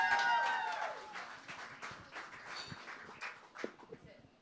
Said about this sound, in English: And without further ado, Patricia Smith, may you do us the honors, please. Mic stand. One more clap, yeah!